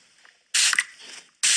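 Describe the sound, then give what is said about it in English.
Two sharp, hissing bursts from a perfume spray bottle, the first longer with a slight sputter, then a short pause before a second quick spritz. Fairly loud, with no voices. “You know, no, it's perfume from a bottle.”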